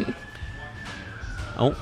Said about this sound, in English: We have been podcasting so long that we're onto sirens number 2. Is it the fire brigade, though? Hang on. Bear with us, listeners. Talk amongst yourselves. Yep. It is the fire brigade again.